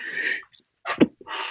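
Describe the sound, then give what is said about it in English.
A single sneeze: a breathy, hissing intake, a short pause, then a sharp explosive burst that trails off into a soft airy exhale, with no talking. “I got a 3-sneeze average, so I expect another one shortly.”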